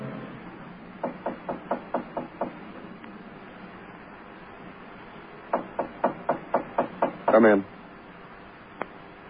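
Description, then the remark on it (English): Two bursts of rapid, firm knocking on a door, about seven raps each, separated by a pause; a brief rattling thud follows the second series, then a single faint tap. “Well, I knocked you.”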